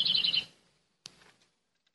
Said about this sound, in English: Is that a parrot in the back?